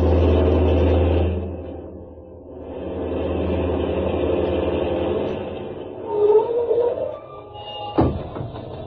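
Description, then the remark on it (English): A heavy truck engine runs with a steady, deep rumbling drone. It eases off briefly, then builds again, and a sharp clunk sounds near the end. “What's wrong with your engine?”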